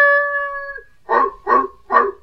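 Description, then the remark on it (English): A large Belgian shepherd dog bays unhappily outside an apartment house on a New York street corner, looking up at a ground-floor window: one drawn-out mournful howl, then three loud, evenly spaced baying barks, with no other sounds around. “There was a modest little apartment house on the corner, and outside, a large Belgian shepherd dog stood looking up at a ground floor window and baying unhappily.”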